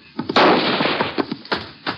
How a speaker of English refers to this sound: What the Sam Hill? Now, who in the thunder are you shooting at?